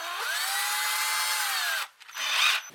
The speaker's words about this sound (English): It's like that drilling, isn't it? It gnaws at you. It gives you a headache.